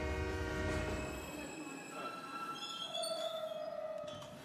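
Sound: train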